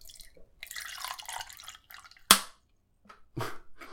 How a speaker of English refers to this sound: That was less climactic than I was hoping, but you can imagine what was happening over here. It was not me peeing. It was pouring water into a cup.